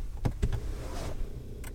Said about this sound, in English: It's so quiet. The loudest thing about turning on the car is that your seat moved forward.